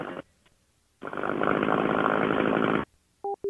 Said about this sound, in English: What's all that noise in the background? Weed eater. Oh, turn it off. You're on the phone.